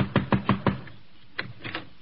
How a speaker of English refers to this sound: I'll go ahead. Knock on the door.